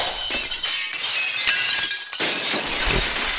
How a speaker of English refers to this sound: And according to the report in the paper, a sow entered the concert hall and knocked over his glasses, and they were all broken.